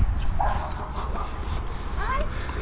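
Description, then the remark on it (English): A small dog behind a fence barks in a few short, scattered bursts, muffled, over a steady low rumble of outdoor background noise. “And another dog behind a fence. This is a particularly loud dog.”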